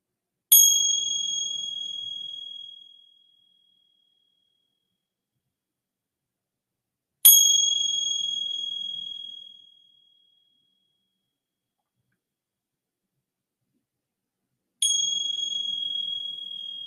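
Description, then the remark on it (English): A bright bell is struck three times at slow, even intervals, each clear ring lingering and fading away into silence before the next strike. “And then receiving the sounds of the bell.”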